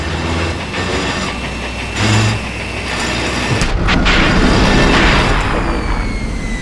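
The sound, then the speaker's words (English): A heavy drill in an open pit black opal mine rumbles and grinds loudly, then jolts with a sudden clatter partway through as it snags, its grinding shifting to a rougher, strained churn afterward. “The drill hit a snag again.”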